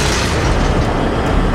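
A heavy door mechanism grinds upward as it is cranked, a loud, steady, dense mechanical rumble with deep low-end roar and no voices, holding constant for under two seconds.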